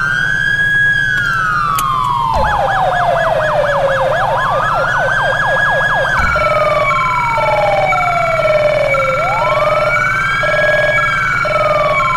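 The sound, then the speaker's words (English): A loud electronic police siren from a Touchmaster TM4 siren controller cycles through several tones: a slow rising-and-falling wail, a rapid yelp, and a choppy high-low pattern, played steadily with no talking. “I got the Need for Speed siren from Heat.”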